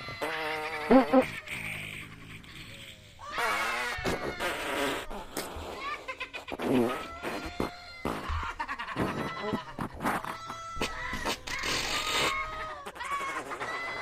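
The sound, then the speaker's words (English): A rapid stream of sped-up fart sounds, squeaky and buzzing at a high pitch, follows one after another with only brief gaps, loud throughout and with no talking over them. “Enjoy the lunder of wonderful sounds of farts, as requested by a Brew Monkey.”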